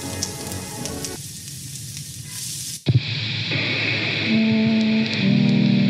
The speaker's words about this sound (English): See, the rain is nice, but I don't really like getting wet. What in the world? No, I went under the awning. It's still raining. Why is it still raining?